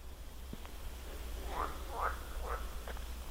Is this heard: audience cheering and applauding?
no